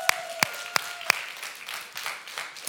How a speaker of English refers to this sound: And if you believe that, everybody said, come on, we just give Jesus a round of applause. Come on.